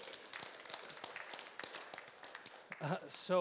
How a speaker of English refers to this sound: So, yeah, we can clap. That's fine. Yeah.